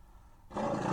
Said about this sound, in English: What's going on down there? Roars a giant, growly voice. Giant saber-toothed tiger mama heard us.